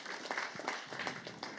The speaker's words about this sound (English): Let's give her a huge round of applause. Very good.